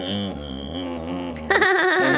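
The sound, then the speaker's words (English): A dad plays a neck kazoo, its buzzy, kazoo-like voice imitating farm animal noises with wavering bleat-like tones, then jumping to a louder, higher, more nasal burst near the end, alone. “Dad, play the neck kazoo.”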